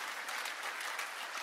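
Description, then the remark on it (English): A steady wash of clapping from a crowd, dense and continuous throughout, with no voices standing out above the applause, given to honour the next generation setting an example of faith. “Yeah, we should put our hands together.”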